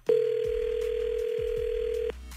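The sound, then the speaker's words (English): A loud, steady phone dial tone holds for about two seconds, then cuts off, with a faint low hum underneath and no voices, as a phone call is being placed to a man. “So we're going to call him with you listening on the phone.”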